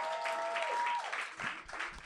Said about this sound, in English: So, but they are getting married in September, so we should give them a round of applause.